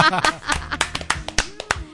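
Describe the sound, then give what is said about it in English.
A few people clap hands in an irregular, brisk patter of sharp slaps, welcoming a radio co-host, while voices chatter and cheer over it throughout. “For like ever, and we still applaud her.”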